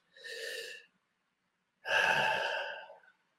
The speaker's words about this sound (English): I want you to stop and pause, put your hand on your chest and one on your stomach, and just start to breathe. Surrendering the exhale with a nice, deep, big belly breath.